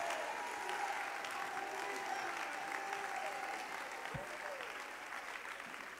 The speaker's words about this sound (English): You want to clap your hands and shout yes if you believe that tonight.